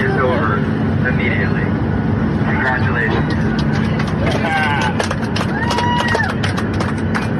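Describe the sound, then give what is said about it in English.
A steady, loud engine drone fills an airplane cabin in flight as a flight attendant announces that the mask mandate is now optional, with several people's voices rising over it and scattered sharp, clattering bursts throughout. “Here's the sound on the plane when the flight attendant announced that the mask mandate was now not a mandate and was now optional and voluntary.”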